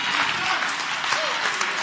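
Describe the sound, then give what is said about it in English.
An audience claps their hands in praise, a dense, steady wash of applause filling the whole clip at an even, fairly loud level, with a few faint voices mixed underneath. “Come on, clap your hands to the Lord right now and give him praise.”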